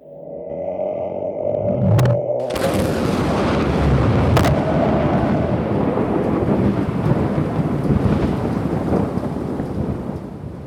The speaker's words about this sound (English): Did I just hear thunder, or was that the vengeful ghost of Turner Jones?